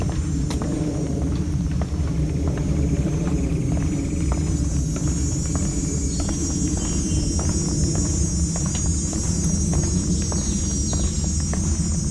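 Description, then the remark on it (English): A steady, droning airplane passes overhead, its low rumble filling the whole stretch at an even loudness, with a faint high insect-like hiss and a few light ticks above it. “It's got another airplane too.”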